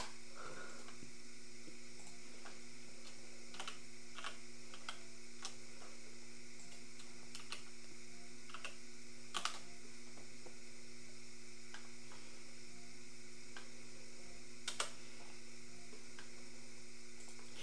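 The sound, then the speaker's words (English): Scattered, irregular clicks and taps of a computer mouse and keyboard in use, over a steady low electrical hum. The clicks are fairly quiet, with a few sharper ones standing out. No one speaks. “You're gonna hear me clicking because I just decided this.”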